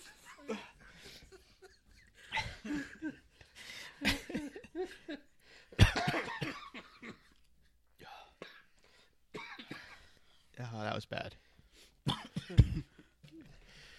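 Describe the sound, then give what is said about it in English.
Several people cough in bursts after laughing, with throat clearing and a bit of lingering laughter mixed in, loud, and someone briefly speaks between the coughs. “We all started coughing after we were laughing.”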